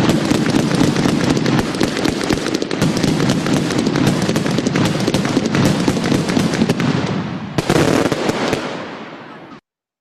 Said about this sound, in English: Since it's the 4th of July, we have to have at least some fireworks here, folks, so you can't see them, but...